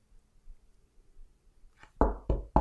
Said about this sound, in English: You knock on my door, I open it.